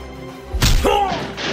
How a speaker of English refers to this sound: With incredible speed, Z throws a punch. The hardest that Marvel has ever felt. Recovering, the mighty nemesis of evil throws his own perilous fist.